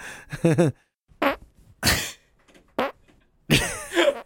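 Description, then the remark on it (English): A string of about five loud fart sounds in separate bursts, some short and sputtering, others longer and buzzy, with brief pauses between them and no talking. “But a multiple barker. I don't want to try too hard because it might go from a fart to a shark.”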